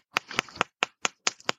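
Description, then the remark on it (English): Hands tapping on the chest over the lungs, from the front and then from the back: about eight crisp, hollow pats in a steady, fairly quick rhythm, with a brief double tap near the end and no talking. “And just tapping the lungs themselves from the front. And then from the back.”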